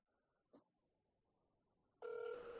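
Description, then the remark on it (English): After a quiet stretch with a brief soft tap, a loud, steady electronic phone ring tone begins abruptly and holds to the end, like an outgoing call from a cell phone ringing through. No one speaks. “I'm going to call her right now.”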